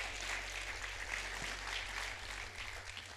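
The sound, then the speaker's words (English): A crowd claps hands in a dense, continuous wash of applause, many claps blurring together without a clear rhythm, steady and moderately loud for the whole stretch. The crowd claps when called on to clap as if for God. “Clap your hands like that's God.”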